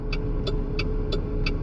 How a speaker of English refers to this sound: As soon as these cars get moving, so I can actually pull out too.